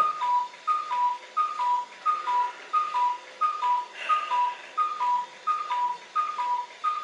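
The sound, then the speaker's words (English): A wind-up Swiss clock sounds a steady string of two-note, whistle-like calls, high then lower, repeating about twice a second at moderate volume with no voices. “Don't mind that clock, it thinks it's 2 hours and 17 minutes later than what it is, because I apparently have an inability to read the time correctly, and it's like a Swiss clock that you have to wind”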